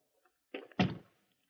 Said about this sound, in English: Does he always lock the door when he leaves this room? There are very valuable things in this room,